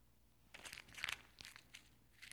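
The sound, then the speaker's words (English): A $100 paper bill is crumpled up, a burst of crinkly rustles in short clustered crackles over about two seconds, fairly quiet and with no talking. “I take this $100 bill and I crumple it up.”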